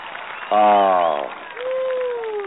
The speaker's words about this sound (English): A round of applause. Okay, let's do that applause. Let's do that ovation one more time, please.